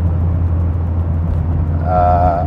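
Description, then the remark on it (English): Steady, loud low rumble of vehicles on a road, with a brief rising tonal whine near the end as traffic moves past close by. No one speaks. “And, oh, cripes, we've got two people passing me here. As we're going into a school zone, for Christ's sake.”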